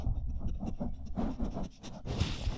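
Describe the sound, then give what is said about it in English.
A dog sniffs and pants at a door and at a microphone, a quick run of short, breathy bursts with some soft scuffing noise, loud with no talking. “Hey, there's a dog sniffing at my door.”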